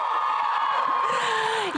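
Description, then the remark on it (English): A live-show audience of women cheers wildly, a dense wall of high-pitched screams and whoops held at full loudness for the whole short burst. “Listen how wild the crowd goes.”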